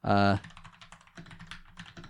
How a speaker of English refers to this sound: I bought a mechanical keyboard. You got the clickety clacks. I got the clickety clacks. And here, let me do a little bit of Foley work for you here.